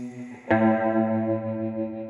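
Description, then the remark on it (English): A single electric guitar note rings out after a brief quieter lead-in, struck sharply and then sustaining loud and steady with a shimmering, chorus-like effect, with no voices. “with the signature guitar tones. With these one single note.”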